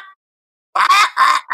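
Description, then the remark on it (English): A voice imitates a crow with three loud, harsh, raspy caws in quick succession after a short silence, with the last caw cut off. “a better podcaster than a crow, because it would just go”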